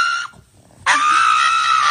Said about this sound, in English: It's the screaming pug dog that gets his fingernails clipped. That's the scream that you just heard.